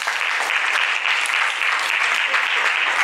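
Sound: audience clapping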